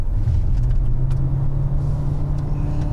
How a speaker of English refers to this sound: Feels strained, doesn't it? I mean, it revs, but doesn't really do No, it wasn't doing so as cleanly or as rapidly as the Volvo did.